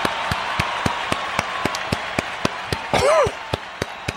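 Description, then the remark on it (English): A live audience gives steady applause with evenly spaced sharp claps over a dense wash of clapping, and a short rising-and-falling whoop or whistle cutting through partway; the applause ends abruptly. “That was a very abrupt ending of applause.”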